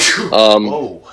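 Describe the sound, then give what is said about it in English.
A single loud sneeze: a sharp breathy burst of air followed by a brief voiced 'choo' that trails off quickly. “Whoa, live sneeze. First sneeze on the podcast, dude.”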